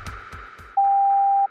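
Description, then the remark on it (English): A single steady, high-pitched censorship bleep tone lasting under a second, loud and clean, following a few soft thumping sounds against a low background hum. “We were forced to beep some parts of episode 6 in June 2023. It sounded like this.”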